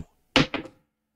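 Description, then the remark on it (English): Dice are rolled onto a hard surface for a wild card roll: a sharp first clack followed by two or three quicker, softer rattling knocks that die away within half a second, with no voices. “And finally, the wild card roll.”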